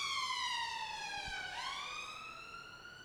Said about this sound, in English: An ambulance there coming past. Pardon? An ambulance. Ambulance.